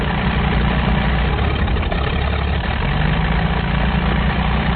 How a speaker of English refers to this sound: At that point, a plane once again roared overhead as one of their friends... That's it. One of their friends roared over the diner in salute.